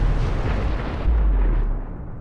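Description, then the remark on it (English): A massive explosion of a burning ship laden with ammunition and fuel roars with deep, rumbling low end, then a second heavy surge of blast noise about a second in, before the thunderous rumble gradually tapers off. No voices. “The massive blast sank the ship and sank another of the bomb ships nearby.”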